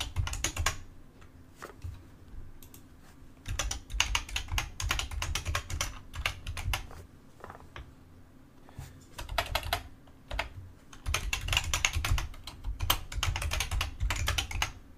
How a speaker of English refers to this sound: But yeah, if you can send those to, you guys get to hear my great mechanical keyboard here.